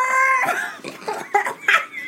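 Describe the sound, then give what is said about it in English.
A voice imitates a cat retching and throwing up a recipe it has eaten: a strained, nasal yowl followed by several choppy gagging heaves, loud, with no other talking. “One of the cats had already eaten his recipe and was puking it up.”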